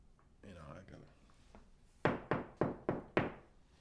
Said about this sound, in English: Just then, we hear banging at the door, right?